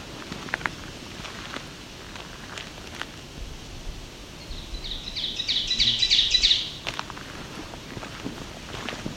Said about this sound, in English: we have an oven bird up here. This call is often referred to as teacher, teacher, teacher. It gets louder and louder as it goes on. They look like thrushes, but they are warblers.